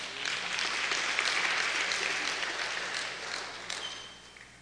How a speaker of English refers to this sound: Well, every time I want you to clap, I'm just going to look in that direction, and I know somebody's going to pull it through for us. Listen, this is worth clapping for